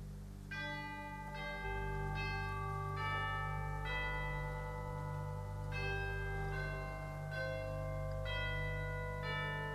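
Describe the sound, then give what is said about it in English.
Bells built into an upgraded pipe organ ring out in a steady sequence of bright, bell-like strikes, each note lingering, over a sustained low organ drone. No one speaks. “Now, it's not common for an organ to have bells in it.”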